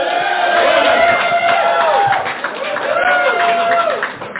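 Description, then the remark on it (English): A loud audience cheers and applauds the mention of a shot of Jaeger, with whoops and shouting voices rising over a dense crowd roar that carries steadily for about four seconds. “You're the only people who applaud Jaeger.”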